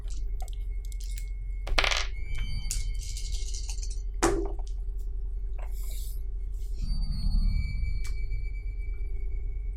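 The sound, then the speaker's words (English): Several sharp clattering impacts and rattles of dice rolled for a game, tumbling across a hard tabletop, come in quick bursts over a steady low hum, with no one speaking. “Alright, so the negative is a 4. And then the positive is 2 threes, a 5, and a 6.”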